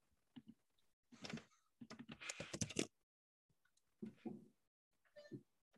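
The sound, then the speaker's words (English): Bursts of rapid typing on a computer keyboard, fairly loud, with clustered keystrokes broken by short pauses, then a few scattered clicks and another quick flurry of keys, as someone types in to look up a percentage. “What are you typing in over there? I'm typing in to see what the percentage is.”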